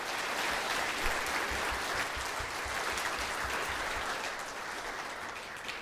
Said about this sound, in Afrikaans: Dankie dat julle ons vermaak met julle musiek. Dit was ons kosbaar en heerlik om julle ook hier by ons te gehad. Geef hulle ook allemaal samen hande klap.